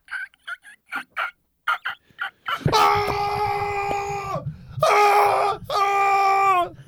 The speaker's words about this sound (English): That was all his friends cheering. Because his eyes popped. His eyes popped out, and the other guy's ankles broke.